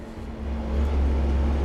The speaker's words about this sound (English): Let's let that truck go by. Sorry, not a truck. Backhoe. John Deere front and back loader. If I were more of a dude, I would know what that was exactly. It's a backhoe, I think.